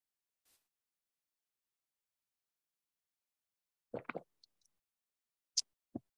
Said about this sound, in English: Speaking of break, I'm just sipping some coffee. It's so good.